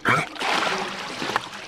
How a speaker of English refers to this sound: As his dog splashes in the water